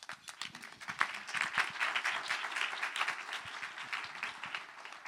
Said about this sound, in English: Thank you. A round of applause.